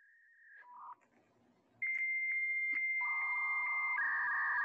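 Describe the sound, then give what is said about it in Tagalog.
Dial-up modem handshake tones of a computer connecting to the internet over the phone line: steady electronic beeps shifting between pitches, then a sustained dual-tone screech with rhythmic pulses, loud with no talking. “Kasi once na nag-ring yung phone, mapuputol yung internet connection mo.”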